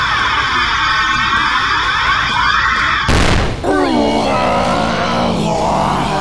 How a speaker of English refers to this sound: I heard the telltale hum of the mecha's trademark eye lasers charging up. Until they fired.